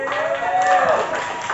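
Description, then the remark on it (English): An audience applauds a poet after the poem's scores are read out, clapping and cheering steadily, a dense wash of applause with voices whooping and shouting through it, holding at an even loud level throughout. “Applaud the poet. Keep that applause going.”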